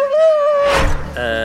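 A dog lets out a high, drawn-out whimper that slides slightly downward, a brief rough huff, then a short howl-like cry, all close and fairly loud with no talking.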